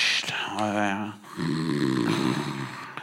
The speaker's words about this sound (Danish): Det er, du skal sætte den op, sådan som du snorker. Du vækker jo. Snorker! Hey, vågn op.